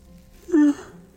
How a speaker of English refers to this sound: It's a big yawn.